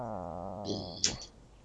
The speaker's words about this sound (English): Sorry, my cat just growled at me. Cats growl? Yeah, they're going... Rah.